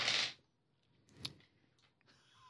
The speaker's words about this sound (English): Why are you using those dice?